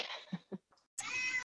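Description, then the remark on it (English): A cat meows loudly: a drawn-out cry, a couple of short chirpy sounds, then a second long, strained yowl. “Loud kitty cat.”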